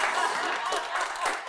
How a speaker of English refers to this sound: And I need an applause just for getting those right.